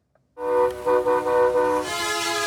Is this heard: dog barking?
no